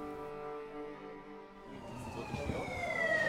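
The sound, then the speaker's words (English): An ambulance siren wails in Jerusalem's Old City, its rising and falling tone drifting over a steady wash of city traffic noise, growing slightly louder toward the end. “Can you hear the sirens, the ambulance?”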